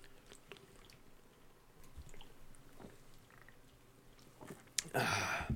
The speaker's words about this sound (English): if we do ourselves a favor and just start the episode off here with a Most Sober Beer Chug just to get things rolling.